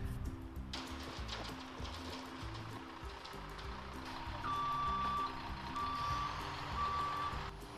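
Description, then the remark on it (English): A concrete truck's engine rumbles steadily while its high backup alarm beeps repeatedly in a regular rhythm as it arrives for a concrete pour at a barn, fairly loud, with light rain-like hiss in the background. “And finally, the truck was here, and the concrete was getting put down.”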